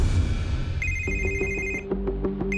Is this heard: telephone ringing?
yes